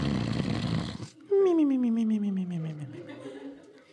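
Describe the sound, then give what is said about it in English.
A voice imitates the loud snore of a wolf asleep in bed: a rough, noisy inhale lasting about a second, followed by a long, falling, voiced exhale that trails off. It is heard alone. “Now that the wolf was full and happy, he climbed back into bed, fell asleep, and began to snore very loudly.”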